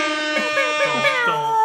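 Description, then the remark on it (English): A blaring air horn sound effect holds one loud, steady, brassy tone for under two seconds, with voices talking over it. “I need some air horns for that one.”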